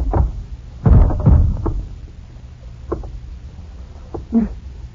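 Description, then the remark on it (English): A heavy, dull punch that knocks a man out lands with a thudding double impact, followed by a few softer knocks and shuffling thumps as he slumps, with no talking. “I didn't want to knock you out, much less tie you up.”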